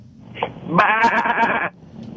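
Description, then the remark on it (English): A man's voice, a caller from Brooklyn, imitates machine gun fire with a rapid, buzzy rattle that lasts about a second. It is loud, and the vocal tone comes out almost like a bleat. “Hey, I got my own machine gun sound.”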